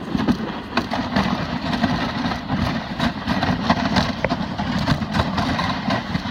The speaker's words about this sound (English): sound that you should be hearing in a jiffy is going to be the sound of sled going over refrozen snow. And then you should be able to hear a little bit of the dogs. And you go wicked fast.